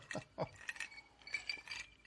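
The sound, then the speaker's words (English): Glasses clinking together as a couple of mates drinking alcohol toast, a quick cluster of bright, ringing chinks, repeated several times over about two seconds with faint murmuring underneath. “Yeah, it's a couple of mates drinking alcohol and exactly. Recording the same Cheers.”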